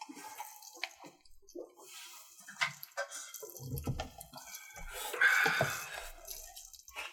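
Wet, noisy gulping as someone chugs a drink after a cheers toast: irregular swallows and slurps with splashy liquid sounds, growing louder toward the end.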